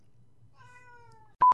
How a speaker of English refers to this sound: Did you hear that cat? I totally heard that cat.